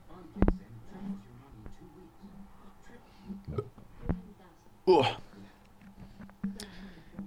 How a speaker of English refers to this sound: Hiccups and burps.